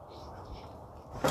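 A seat is dragged across the floor to where the speaker is sitting, a low continuous scraping rumble for about a second, ending in a sudden louder bump as it is set down.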